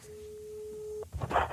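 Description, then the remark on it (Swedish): A steady telephone ringback tone hums for about a second while a call is placed, then cuts off and gives way to a short burst of line noise as the call connects. “Ringer Johan P3.”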